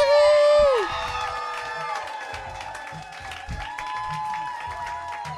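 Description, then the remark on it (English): A live comedy-show audience claps and cheers as a stand-up comedian is introduced, with a loud shrill whoop rising over the crowd at the start, then a steady wash of applause and scattered shouts continuing throughout. “So start clapping right now.”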